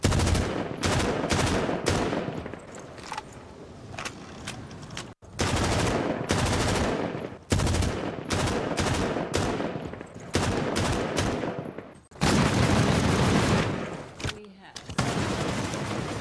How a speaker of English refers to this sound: And we'll be right back after some gratuitous gunfire from a variety of high-powered automatic rifles.